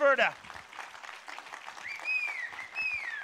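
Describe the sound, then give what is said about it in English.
A church audience breaks into steady, sustained applause for the Lord, a dense wash of many hands clapping, with a brief voice at the start and high whoops or whistles rising over the clapping. “So let's applaud the Lord one more time.”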